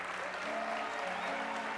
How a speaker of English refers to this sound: Come on, give them a big hand right now.